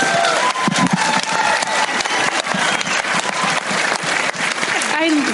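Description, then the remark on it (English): A sustained round of audience applause for the character Bob, dense and steady clapping from a crowd filling the whole stretch, with a few scattered voices and whoops mixed in near the end. “It was a round of applause for Bob, please.”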